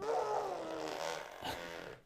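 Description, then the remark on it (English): A wet, buzzing raspberry blown with the lips by a child, a fart-like sputter held steadily for about two seconds with a brief break near the end. “That's not you farting. You're making that noise with your mouth.”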